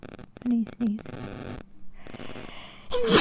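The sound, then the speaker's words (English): Someone talks briefly, then a sudden, loud sneeze bursts out at the very end, sharp and explosive. “Bless you.”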